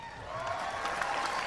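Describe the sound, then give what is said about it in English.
An audience applauding, a dense, steady wash of many hands clapping together at an even, moderate loudness throughout, with no voices standing out. “Worthy applause.”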